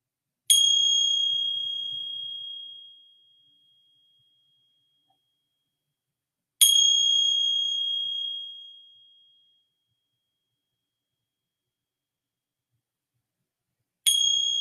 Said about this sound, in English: And receiving the sounds of the bell.